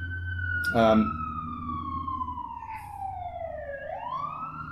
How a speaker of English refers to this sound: And here's the siren coming up.